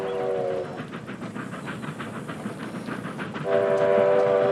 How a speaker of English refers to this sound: Come on, Teddy! Come on, Teddy, man. Get off the tracks. You're crazy. Train dodge.